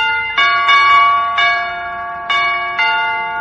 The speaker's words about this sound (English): I don't suppose you've got those door chimes fixed yet, McGee, have you? Stop accentuating the negative, Molly. I just rewired the whole dingus. Will you hear it? Go outside and buzz me, baby. I'll believe it when I hear it. Here goes.